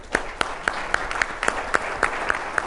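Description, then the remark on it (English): Steady audience applause for the Kessler Foundation, a dense wash of clapping with sharper claps standing out at a quick, regular beat. It is fairly loud, with no talking over it. “And so before we go any further, all of you, friends of Kessler Foundation, this foundation deserves a great round of applause.”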